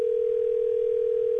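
A steady, unbroken telephone tone hums at one pitch for the whole moment, loud, with no voices over it: the tone of a phone call that has been blocked.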